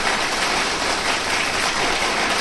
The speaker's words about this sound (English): That was a laughing stock of the end of that, last that deserved every second of that applause.